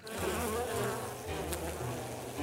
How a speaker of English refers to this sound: or tend a colony of angry bees?